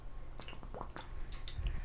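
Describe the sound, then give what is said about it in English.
A person takes a drink of water, with soft sips, small wet clicks and gulping swallows. Nobody speaks. “Just let me take this drink of water here.”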